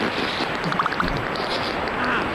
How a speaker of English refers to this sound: No, that is titled Beaver Fart, and I will never get rid of Beaver Fart, okay? Is it so wet and poppy? Because he's in the water. He's a beaver, okay? It's not dry where beavers live. It sounds like he's really pushing at the end